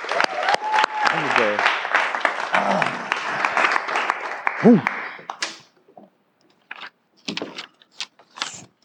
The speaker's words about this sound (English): Clap it up.